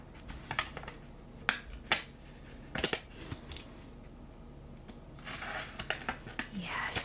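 Quiet paper sounds: sharp crackles and snaps scattered irregularly, then a longer stretch of rustling and crinkling toward the end, as the paper packaging of a traveler's-style notebook journal is handled and pulled open.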